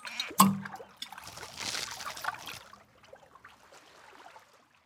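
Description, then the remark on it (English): Water splashes and sloshes onto feet on a beach: a sharp slap, then a rushing wash that tails off into softer trickling and dribbling as it settles. “Imagine waking up on a beach and water is splashing on your feet while the seagulls are calling out for each other and the soft sand going through your hands and feet.”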